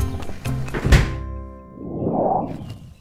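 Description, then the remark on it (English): A door is opened: a solid thunk like a latch releasing, followed by a rising and fading whoosh as it swings. No one speaks. “Okay, now let me just open this door here.”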